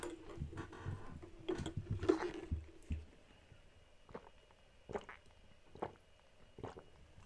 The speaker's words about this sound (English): For this, I must take a drink of water.